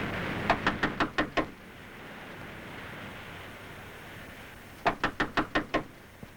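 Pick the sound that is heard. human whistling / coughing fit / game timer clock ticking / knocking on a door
knocking on a door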